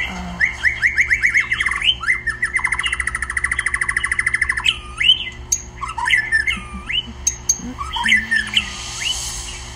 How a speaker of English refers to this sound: Over 30 birds sing in William's front garden, and he can't imagine a nicer sound.